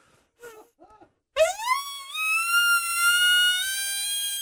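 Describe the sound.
A few soft low grunts, then a loud imitated elk bugle blown on a call: a tone sweeps upward into a piercing, harmonic-rich whistle that holds steady for several seconds.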